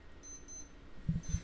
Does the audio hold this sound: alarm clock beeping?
yes